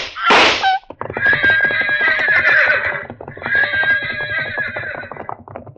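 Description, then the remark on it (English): Pack horses rear at gunshots and neigh loudly, two long, shrill whinnies with a shaking, trembling pitch, opening with a sharp burst of noise and snorting. No one speaks. “The pack horses reared at the shots.”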